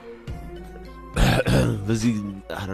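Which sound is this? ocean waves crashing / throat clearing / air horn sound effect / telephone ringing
throat clearing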